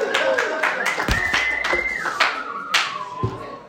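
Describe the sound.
An audience applauds steadily for several seconds, a dense patter of many hands with sharper individual claps standing out, while a high whoop or cheering voice rises above the clapping.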